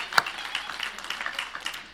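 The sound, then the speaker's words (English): An audience in a room applauding people of seven years or more, a dense, steady patter of many hands clapping for about two seconds, with one sharper clap standing out near the start and no voices over it. “How many folks in the room, let's go 7 years or more, 7 years or more, nice and high, be proud, 7 years or more, good round of applause.”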